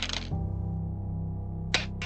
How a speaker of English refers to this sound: Remind me how you do a disadvantage roll like this again? So you're going to roll two dice and you have to take the lower outcome.